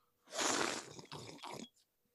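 Someone sips from a cup of coffee: one long, airy slurp followed by two shorter ones, fairly loud, with no talking during it.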